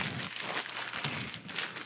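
Continuous scratching and crinkling as keys scrape and tear through a box's tape and packaging, a steady rustle with small crackly bursts and no one speaking.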